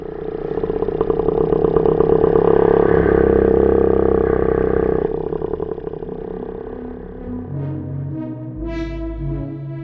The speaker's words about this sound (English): So when we made these sounds for the first time, you got sound and it sounds exactly like a baleen whale.